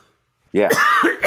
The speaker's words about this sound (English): So I'm going to have to do a cough.